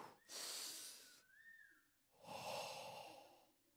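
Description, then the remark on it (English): A voice imitates the heavy, nervous breathing of a petrified person: two long, loud, breathy huffs separated by a brief pause with a faint whistly tone between them. “And she comes in, and she could tell that he's petrified, and he's beginning to, like, breathe heavy.”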